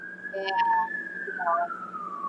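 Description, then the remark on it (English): A steady siren tone sweeps slowly downward in pitch as an ambulance goes by, fairly prominent, with faint fragments of voices mixed in underneath. “Either my mom or me has an ambulance passing by.”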